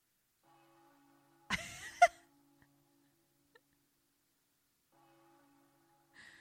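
ambience, church bells ringing

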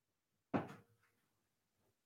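household object, door being closed

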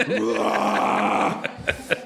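human body sound, belch

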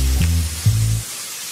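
nature, rain sound

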